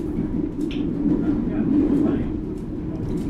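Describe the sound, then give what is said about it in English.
A steam train on the Isle of Wight steam railway, just leaving Brading, rolls along with a steady, loud low rumble and occasional light clanks, swelling slightly midway as another train passes alongside. “Passing the other train.”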